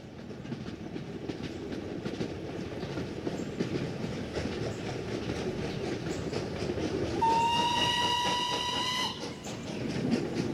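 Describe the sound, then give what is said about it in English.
A train rolls steadily along railroad tracks on the north side of the New River with a deep rumble and rhythmic clacking. Partway through, a loud whistle sounds for about two seconds, then the rolling noise carries on. “because this particular piece of land, located on the north side of the New River, had a railroad running through it.”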